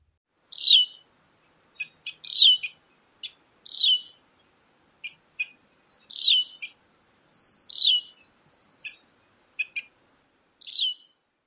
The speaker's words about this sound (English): Well, that's not all the sounds that red-winged blackbirds can make, but it's a pretty good sampling. The calls of the red-winged blackbirds can be overwhelming.